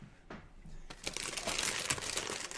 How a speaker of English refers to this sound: That's me crackling open a bag of... a wrapper for white fudge Oreos.